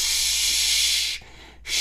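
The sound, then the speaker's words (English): An aerosol can of hair spray hisses out two bursts of spray: a long, steady airy hiss, a brief pause, then a second burst starting up. Bright, high-pitched and fairly loud, with no voices. “Or they're spray on. Like right here, you could just spray on.”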